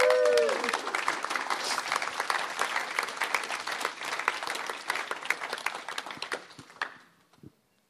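A crowd breaks into dense, steady applause, many hands clapping together for about seven seconds before it thins out to a few final claps. A short vocal sound rises briefly at the very start.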